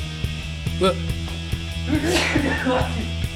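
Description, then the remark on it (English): A single loud, forceful human sneeze bursts out, with a brief voiced trail after it, over a steady low hum. “That was a rather dramatic sneeze.”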